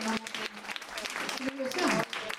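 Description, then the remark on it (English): An audience claps steadily throughout, a dense crackle of many hands at an even, fairly loud level, with a few voices calling and whooping over the applause. “Clap it up if that's a normal thing for me to assume.”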